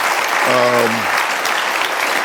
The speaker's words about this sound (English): She's getting an applause break, too